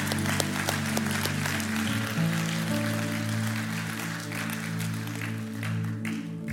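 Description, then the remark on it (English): A church audience breaks into steady applause for people who chose to put Jesus over everything, dense clapping from many hands, with a sustained low musical drone or organ chord humming underneath throughout. “Church family, would you give those people a round of applause who have boldly said that?”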